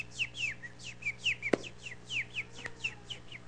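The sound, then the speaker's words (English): A steady series of bright, repeated bird chirps, about a dozen short downward notes in quick rhythm, with a sharp knock or click partway through and a low hum underneath. “But I tell you something, when you meditate like these birds do, and you think about it, and you're chirping it all the time, it just becomes a natural part”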